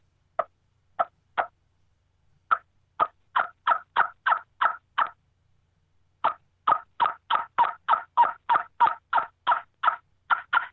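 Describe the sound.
An air-operated game call blown alone in short, raspy notes: three spaced blasts, then a quick run of about nine, a pause, and a longer steady string of rapid calls.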